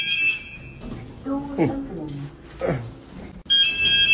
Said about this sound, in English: Now she's pressing her alarm.